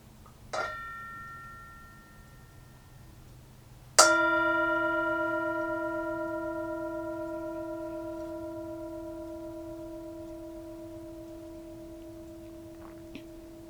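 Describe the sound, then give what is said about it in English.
A meditation-style bell is struck twice: a light tap, then a full strike whose rich, ringing tones hang in the air and slowly fade over about ten seconds, with no voices. “Here's the bell.”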